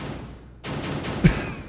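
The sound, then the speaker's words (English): A single sharp metallic bang sound effect cuts through a steady wash of rumbling noise, loud, followed by a brief ringing tail as the background hiss continues. “I got metal bang.”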